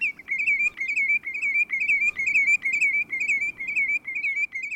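A lesser yellowlegs sings a long, steady run of rapid, repeated whistled notes, evenly rhythmic and fairly high-pitched, over a soft low background rumble with no voices.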